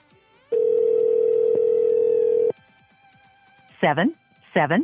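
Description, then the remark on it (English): A steady telephone dial tone hums for about two seconds while a cell phone number is dialed, then cuts off, followed after a pause by two short bursts of a voice. “Okay, so his landline's disconnected. Let's try his cell phone.”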